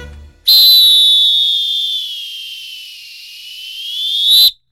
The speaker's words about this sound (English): So the next time you go to the pool, listen to those whistles, safety first, and give those lifeguards some credit for their whistleblowing.